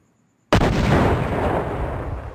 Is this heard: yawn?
no